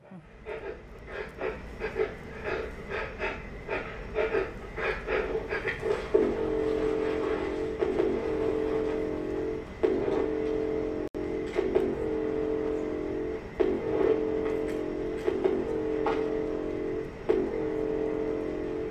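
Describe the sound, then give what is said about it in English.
Recorded breathing sounds in a steady rhythm of breathy, hissing pulses, fairly loud, with a low droning undertone running beneath throughout and no talking. “I'm playing the breathing clip.”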